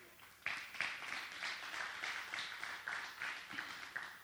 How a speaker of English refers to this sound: Now, I assume that that clap goes to God for what he's doing. Amen?